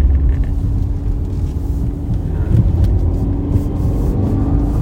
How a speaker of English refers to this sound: She pulls strong. I mean, it's a sounds so good. It's a stout car. Third gear.